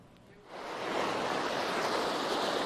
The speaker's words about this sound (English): Hey, good morning down here on Gore Creek. Gore Creek is moving fast.